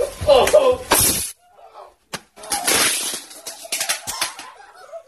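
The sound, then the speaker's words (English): A firework mortar, dropped into a capped 2 to 3 gallon plastic water bottle tied down to a glass table, goes off in a loud, sharp blast, followed by crashing, shattering glass and scattered debris, then a second burst of breaking noise and clatter that slowly trails off. “These guys drop a mortar in a plastic water bottle, big one, 2 gallon, 2 or 3 gallon, and cap it to see what happens.”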